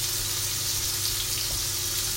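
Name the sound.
food sizzling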